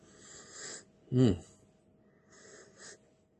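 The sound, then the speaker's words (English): Two long, breathy nasal sniffs as a person smells a scented product from a miniature bottle, with a brief voiced murmur between them and no clear speech. “do you want to give it a go old sniff?”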